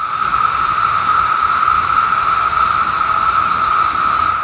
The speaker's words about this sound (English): the trees along the edge of campus were filled with what I can only describe as a high-pitched roar. I went out at lunch and the sound was even louder. I got some audio, so here's what a whole bunch of cicadas sound like when they're calling at once.